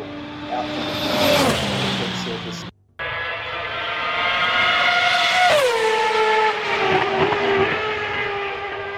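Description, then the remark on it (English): The engines of a 2014 spec and a 2013 spec Formula One car heard in turn, each a high, tonal whine that rises and drops in pitch as the car passes by, split by a brief cut to silence. “Now once again, the 2014 and 2013 spec Formula One cars.”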